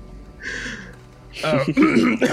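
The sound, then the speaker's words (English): A single short, raspy cough from laughter bursts out near the start, followed after a brief pause by a voice speaking or laughing. “has to stop for a second to cough out a from laughter.”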